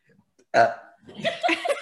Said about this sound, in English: Haunted burp. Yeah. That's mine.